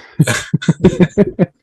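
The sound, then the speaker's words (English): A short run of about eight quick, voiced cough-like bursts, fairly loud, sounding like a person mimicking coughing with the voice rather than truly coughing. “Cough, cough.”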